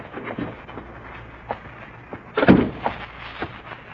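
The heavy main door of an office building is pushed open and swung shut on a rainy night, landing with a solid thump about halfway through, with lighter knocks and rattles around it and a low background rumble.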